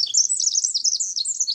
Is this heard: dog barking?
no